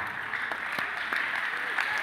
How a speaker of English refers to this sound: Oh, your clapping is sick in the house. Your clapping is sick in the house. Your slapping is low.